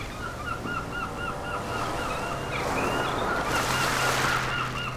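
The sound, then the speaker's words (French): Many seagulls call over and over in quick, overlapping cries, set against a steady wash of ocean surf that swells louder toward the end. “Je crois que je vais ajouter un peu plus de mouettes.”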